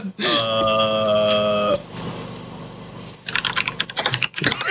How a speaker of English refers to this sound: Furiously typing.